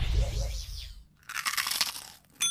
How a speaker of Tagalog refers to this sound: Kagat na ng chicharon ni Aling Maria! Crispy, crunchy, at super meaty!